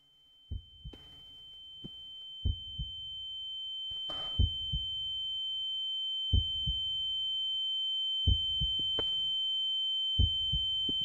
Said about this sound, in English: You hear that? Yeah. Hear what? It's like footsteps.